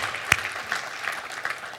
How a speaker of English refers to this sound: And that is remarkable that we supplied Christmas for 65 kids in our community. And that's something to be proud of. So let's give ourselves a round of applause for that. That is awesome.